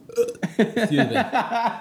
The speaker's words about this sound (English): Excuse me. I don't mean to burp on the podcast. I'm sorry. That's gross as a bodily function.